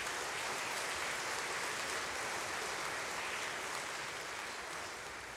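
Steady audience applause, a dense wash of many hands clapping at an even level for several seconds, tapering only slightly toward the end, with no voices on top.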